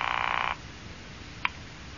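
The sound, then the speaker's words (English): A telephone rings once in a short, buzzy burst lasting about half a second, followed by near silence broken only by a faint click. “Oh, will you answer the phone?”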